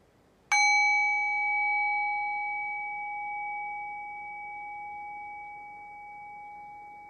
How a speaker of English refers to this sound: Pay close attention to the quality of stillness, of silence in the present moment. And I'll ring the bell. Pay close attention to what happens to the silent space when I ring the bell.